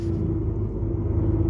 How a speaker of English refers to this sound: Morning everyone, welcome to GCP on the train back to Manchester Piccadilly via Reddish North and Strines.